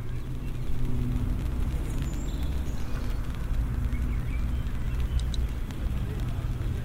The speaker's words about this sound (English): I really like the sound of the rain on my umbrella. It's really a nice soft little sound.